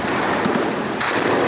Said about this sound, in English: Gunfire in the Yemeni city of Aden causes panic on the streets after Houthi rebel forces and their allies seized the nearby airport.